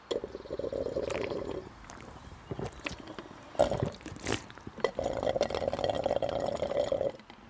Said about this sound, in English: And I love the idea of freshly made lemonade. And it's on ice, too. In fact, I'll try a sip of that now.